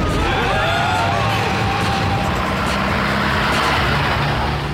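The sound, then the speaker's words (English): A taxi engine roars loudly and continuously, revving hard as the cab accelerates away, with a dense rush of road and engine noise filling the whole clip. “Take a left here, cabbie. No entry, mate. Commit a traffic offence or get blown up.”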